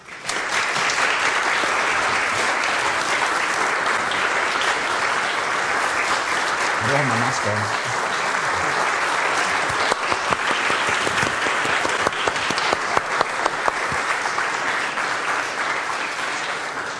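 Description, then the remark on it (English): A large audience breaks into sustained, dense applause as a round of thanks while flowers, a card and a gift are presented. The clapping is steady for the whole stretch, with a brief voice or cheer rising faintly beneath it partway through. “I have some flowers, a card and a gift to give you just now, and maybe as I share those, the congregation here and at home could share their thankfulness with a round of applause.”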